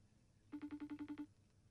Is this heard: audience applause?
no